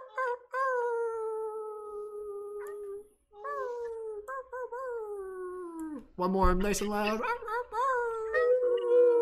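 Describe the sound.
Several people, including online participants with microphones unmuted, imitate wolf howls together to end a guided session: long, drawn-out wavering calls that rise and fall, swelling into a loud overlapping chorus near the end, with a brief spoken prompt between howls.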